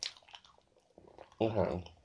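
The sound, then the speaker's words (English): Soft, wet chewing of a banana, a few quiet mouth smacks followed by a brief louder voiced murmur near the end. “As I'm munching on this banana.”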